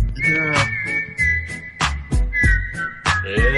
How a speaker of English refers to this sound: I whistled at Chris the first time I saw her.